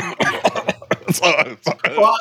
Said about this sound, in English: Sorry, I just had to clear my throat there.